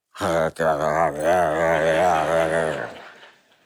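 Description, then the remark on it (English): A man's voice imitates a dog growling over a bone it loves, one sustained, low, rumbling growl lasting about three seconds, loud, with a brief catch near the start before it fades out. “Have you ever watched a dog take a bone that they just love? And they sit down with the bone and they go”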